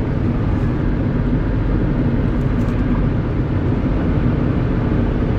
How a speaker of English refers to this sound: I'm driving. Hang on just a second. I'm reading and there's some traffic coming, so I gotta pay attention.